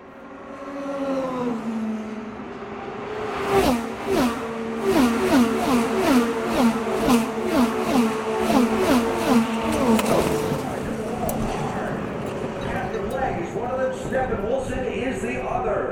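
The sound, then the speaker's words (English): A pack of 16 Indy race cars screams past on the speedway at high speed, overlapping engine whines rising and falling in a dense roar for several seconds before fading into a drone. “16 cars on the speedway. Here they all come.”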